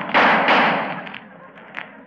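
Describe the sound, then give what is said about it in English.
Two loud shots from an Army .45 pistol crack in quick succession in a hotel corridor at night, each leaving a long ringing echo, followed by a few fainter, softer knocks as the sound fades. “Next thing I remember was hearing footsteps running up and down the hotel corridor and an Army 45.”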